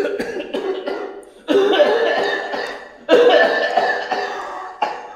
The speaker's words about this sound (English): Nitre? I fear that it affects you. How long have you had that cough?